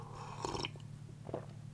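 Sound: sipping coffee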